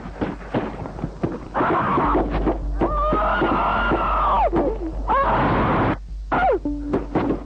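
Anguished screaming in long, drawn-out wails rises over a loud, noisy background, broken by sharp thuds and clatter, sounding like chaotic footage heard through a speaker.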